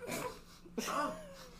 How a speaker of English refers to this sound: No, my verb is specifically sniffing. Oh, that's what the rich people do. They sniff things like Coke and rubber cement.